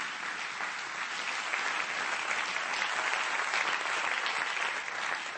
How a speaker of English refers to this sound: Come on, clap your hands to the Lord right now.